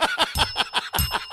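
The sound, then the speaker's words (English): A bell rings with a thin lingering tone over rapid, rhythmic bursts of laughter, the laughs pulsing about five times a second, fairly loud. “I almost just broke the bell.”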